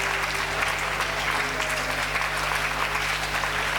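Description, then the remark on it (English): An audience claps hands in place of praying, in a dense, sustained wash of overlapping claps at steady loudness, continuous throughout with no pauses, a faint low hum underneath. “Don't pray, just clap your hands.”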